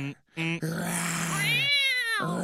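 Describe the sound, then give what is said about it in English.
A person's voice imitates a big cat's growl, a loud, drawn-out rasping roar with a rising, wavering pitch, broken by short pauses at the start and end. “You ain't no big lion. You a little meow.”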